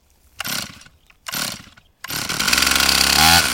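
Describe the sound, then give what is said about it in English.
A chainsaw revs in two short bursts, then roars steadily as it bites into wood, loud, the engine pitch shifting under load. It is cutting invasive Russian olive trees during conservation work in the Scott and Norma Matheson Wetlands Preserve in Moab. “Spencer Erickson is bent over a chainsaw in the Scott and Norma Matheson Wetlands Preserve in Moab.”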